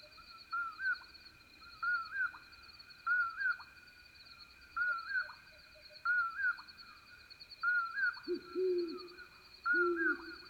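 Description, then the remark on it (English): Low, muffled hoots of a great horned owl come in twice near the end, beneath another bird's steady, repeated two-note whistled calls. “In this recording, listen also for the low hoots of a great horned owl and the soft bouncing toots of a very distant western screech owl.”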